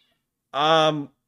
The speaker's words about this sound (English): Hang on. Sorry, I think the cats were just having it out with each other outside. I just heard something fall over and a meow.